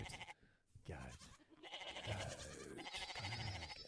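A goat bleats several times in quick succession, wavering, nasal cries, fairly loud, with short gaps between calls and no talking.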